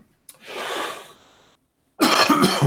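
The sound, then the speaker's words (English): A harsh cough bursts out and trails into a raspy exhale, then after a short pause a second loud, rough cough follows. “You got to take a sip. Mm-hmm. Before I cough to death.”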